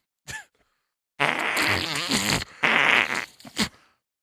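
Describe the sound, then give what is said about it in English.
A short burst followed by a long, loud, sputtering fart noise made by blowing through hands placed over the mouth, then a few brief flappy blasts trailing off. No one speaks. “This one's place hands over mouth, make fart noise.”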